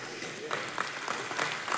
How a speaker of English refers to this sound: Y'all don't know whether to golf clap or football clap, do you?